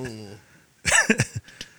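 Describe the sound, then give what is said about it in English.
A short burst of voice gives way to a harsh COVID coughing fit: one loud cough followed by three or four quicker, rougher coughs, then a faint last one. “I put in, there go my COVID cough.”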